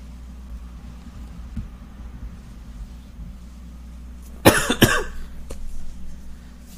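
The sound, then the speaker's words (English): Two sharp coughs break out against a steady low hum, followed moments later by a fainter third cough. Nobody speaks. “Dude, you're coughing at really good times.”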